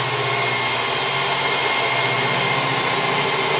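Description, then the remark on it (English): A power drill runs continuously at a steady, loud whine while a heavy metal equipment shelf is put up with large toggle bolts, its harsh motor noise filling the whole stretch without pauses or change in pitch, with no voices over it. “He can't hear me. He's got the drill going.”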